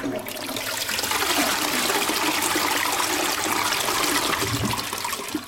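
A toilet flushes loudly and steadily, a rushing gush of water that swirls for several seconds without pause, with no voices over it.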